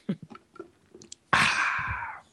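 A few soft mouth clicks and small sounds, then a loud, airy slurp of an Irish cream iced coffee from a donut shop that lasts about a second before trailing off. No one speaks.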